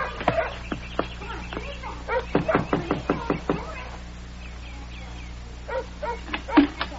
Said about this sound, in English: You just knock and my mama will come.